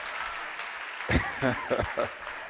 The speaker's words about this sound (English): Clap your hands if you're ready for the word.